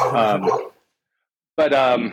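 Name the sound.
dogs barking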